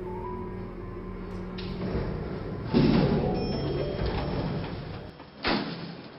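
A door slides shut with a heavy clunk, followed by the steady mechanical rumble of an elevator descending, ending in another short thud as it stops.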